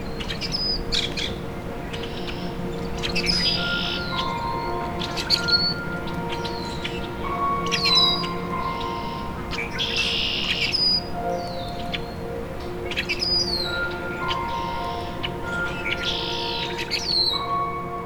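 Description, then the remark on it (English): Repeated squeaky, creaking calls of an uncommon blackbird species, like rusty hinges, several birds calling over one another against a steady background of other chirps and buzzing, no talking. “Their song is a bit hard to describe, but can sound like rusty hinges.”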